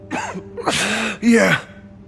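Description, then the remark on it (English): A man sitting on the ground after his knees gave out gasps and wheezes for breath, three ragged, strained breaths in quick succession, each a raspy, partly voiced heave that rises and fades. “I guided him into a sitting position on the ground, listening to him gasp and wheeze.”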